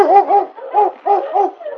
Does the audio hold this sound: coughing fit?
no